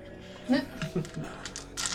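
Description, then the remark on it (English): A large handful of dice is rolled against a target number during a tabletop game, rattling and clattering across a surface in a quick, irregular burst of clicks, ending with a final bright scatter of small taps, with low murmuring voices underneath. “Yep, that's a lot of dice.”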